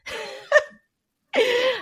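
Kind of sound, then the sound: human body sound, sneeze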